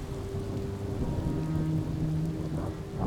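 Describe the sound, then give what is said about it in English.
Rain patters steadily against a car windshield, a dense continuous spatter of drops over a low, droning rumble, with no voices. “And as they drove back to the city, the first drops of rain hit their windshield.”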